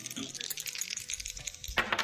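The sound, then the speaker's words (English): A pair of dice is rolled for an odd-or-even call in a contest, rattling and clattering across a hard surface in a quick run of small clicks, ending in a brighter burst of tumbling knocks before settling on a 10. “Let's roll the dice.”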